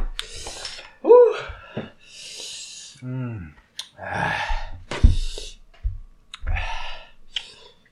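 Several crisp, papery rips and rustles, like a paper towel being torn off and rubbed against something, come in short bursts, with breathy vocal sounds and brief exclamations between them.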